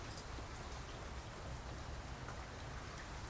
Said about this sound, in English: It is raining cats and dogs today. That's what you're hearing in the background.